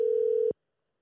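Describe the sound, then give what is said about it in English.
A single steady electronic telephone tone from an outgoing phone call sounds clearly for about half a second, then cuts off abruptly into silence, with no voices present. “I like how everybody's answered my phone call, too.”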